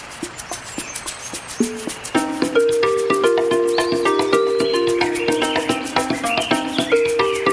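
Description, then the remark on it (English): Crickets chirp in a steady, rapid rhythmic pulse throughout, clear, while a sustained tonal melody rises in underneath after about two seconds. “So listen closely and get ready to jump into the episode as we talk about crickets.”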